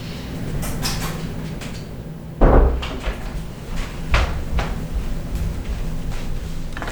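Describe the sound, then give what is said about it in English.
A door bangs, opening with a solid thump and then knocking shut a moment later, with some lighter clattering and a low background hum throughout. “you knocked on the door, get your butt in here.”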